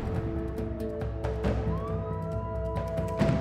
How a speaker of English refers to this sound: You guys can't hear that? Sirens. Police sirens? I thought you guys said the alarm was off. It's probably not for us.